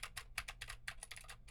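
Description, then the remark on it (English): Rapid clicky keystrokes from a mechanical keyboard with Gateron Blue switches, a steady stream of sharp, bright clacks at an even typing rhythm, clear with a faint low hum underneath and no voices. “Now I am typing on a keyboard with Gateron Blue switches to see how much of my voice versus how much of the keyboard it picks up.”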